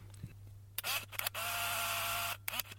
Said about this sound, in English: Anyway, here's shutter number two.